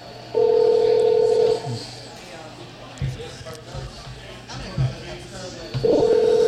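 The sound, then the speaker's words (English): Telephone keypad dialing tones as a phone call is placed: a steady electronic beep lasting over a second, a quiet pause with faint murmuring, then the tone returns at the end, clear. “I can see him in real time ignoring my call.”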